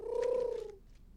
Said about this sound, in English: Look, there's a pigeon. How did he get in here?